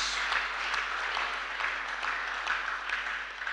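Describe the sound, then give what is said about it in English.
An audience claps their hands together to praise the name of Jesus, producing a dense, steady wash of overlapping claps that holds at an even level for several seconds, with no voices standing out. “Oh, clap your hands and praise the name of Jesus.”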